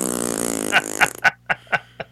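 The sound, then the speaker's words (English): A voice imitates a loud ripping fart: a sustained buzzy raspberry that breaks into a string of about five evenly spaced, sputtering pops, fairly loud. “and I farted. It was so loud. It was like the rippy, kind of like a...”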